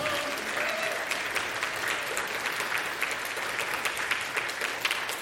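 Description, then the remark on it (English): A crowd at the Presbyterian Church of the Covenant (PCC) claps steadily for several seconds for new members, a dense, sustained patter of hands with no voices standing out. “Round of applause for our new members.”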